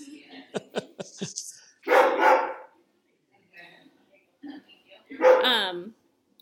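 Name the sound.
dog barking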